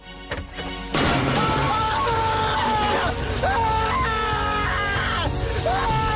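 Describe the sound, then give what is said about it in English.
After a quiet moment, a bucket of holy water balanced on a door suddenly crashes and splashes down loudly onto someone entering, followed by a sustained wet sloshing roar as a voice groans and cries out over it. “Mind the bucket on the door.”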